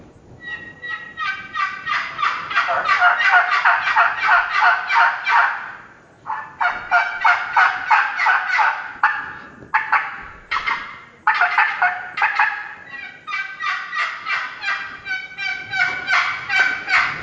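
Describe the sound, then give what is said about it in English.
An aluminum turkey call with an aluminum lid is worked loudly, producing long runs of rapid, raspy hen yelps in steady rhythm, broken by a few short pauses, with no talking. “It's made out of aluminum. The lid is made out of aluminum, and it's got volume.”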